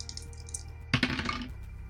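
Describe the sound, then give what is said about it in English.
A short clatter of a single die rolled in a game, tumbling across a hard table and landing on a two, a quick burst of bright clicks and rattles lasting about half a second, with no voices. “I'll give you a die. And then you're using a paranormal ability. So mark a two resonance and make that roll.”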